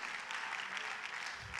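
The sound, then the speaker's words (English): An audience claps hands in worship of the Lord in a dense, steady wash of applause that stays fairly loud throughout, the many overlapping claps blurring into a continuous bright crackle with no voices standing out. “Come on, clap your hands unto the Lord and worship him and thank him.”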